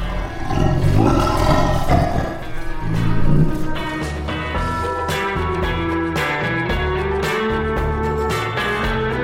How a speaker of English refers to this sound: It looks savage, completely savage, and it sort of stands on these huge bent legs with muscular thighs, and it's sort of panting and growling low.